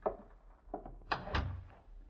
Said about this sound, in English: Close the door, please.